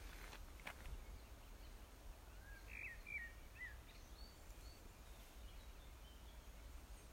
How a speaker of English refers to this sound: Scattering of crows and magpies. Peaceful scene.